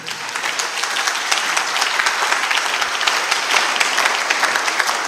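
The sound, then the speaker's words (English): An audience claps for the Lord steadily, a dense, sustained wash of many hands that holds at an even, fairly loud level throughout, with no voices standing out. “Those who believe, give the Lord a proper clap.”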